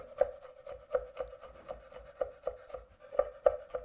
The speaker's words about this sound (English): Okay, now we gotta start to chop the garlic. And the garlic you can chop it any way you want. And I do like this with a knife. And we chop a little bit.